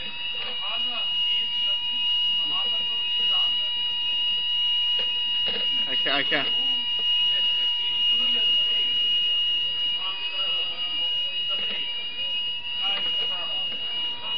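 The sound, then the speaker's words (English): A fire alarm rings continuously with a steady, piercing electronic tone, loud, during a lecture, while people talk underneath it throughout. “Brother, it's a bit difficult to hear you with this alarm going on.”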